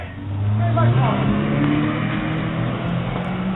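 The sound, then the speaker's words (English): A stolen car's engine revs hard and accelerates away, its pitch climbing in the first second, then holds a loud, steady roar, with indistinct voices underneath. “They just stole my car.”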